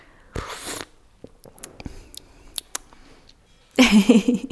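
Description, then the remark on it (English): A short, airy slurp of tea is followed by scattered small clicks and wet mouth sounds, then a louder, rougher burst of noise at the end. “So here we are, slurping the tea.”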